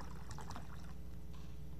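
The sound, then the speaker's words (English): Wine is poured into a cup, a soft gurgling splash that swells and fades over about two seconds against a low steady hum. No one speaks. “And after the meal, he took a cup and poured wine in, saying, this cup is a new covenant.”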